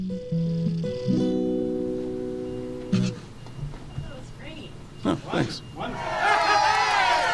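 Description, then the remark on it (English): Sustained sung tones give way to scattered vocal bursts, then a crowd's cheering swells up in the final seconds, a dense, rising roar of many voices that grows louder toward the end. “I love how the crowd fades in.”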